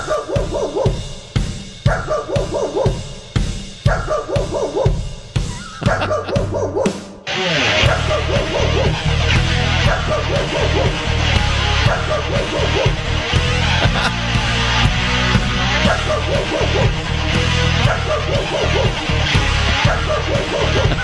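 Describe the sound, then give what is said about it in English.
A remix of a neighbour's dog barking, blasted through patio speakers at maximum volume: rhythmic barks chopped into a beat, looping for several seconds before dense, loud music kicks in with the barking samples woven through a thumping backing track. “Well, of course, you're going to do a remix of the dog barking and blast it at your neighbors through your patio speakers at maximum volume.”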